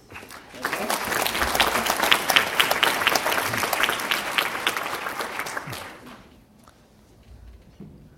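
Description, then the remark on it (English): An audience claps steadily in a dense wash of applause that holds strong for about six seconds, then tapers off quickly into near quiet with a few scattered claps. “You see applause around here.”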